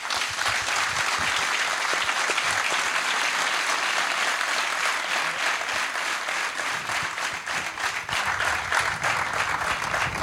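studio audience applause

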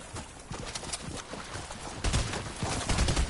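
video game gunfire

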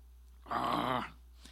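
stomach growling

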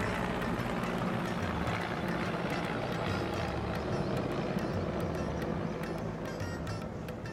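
helicopter flying overhead

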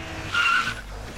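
car tires squealing

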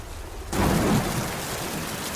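rain falling

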